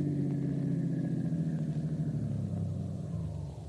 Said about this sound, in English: Turn into the workyard and park in our garage. And next to the truck there.